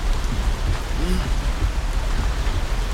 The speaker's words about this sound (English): It's just the rain caught me off guard.